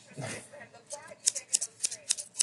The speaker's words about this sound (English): Smoother. Yeah. Smoother slice. Rate my scissor.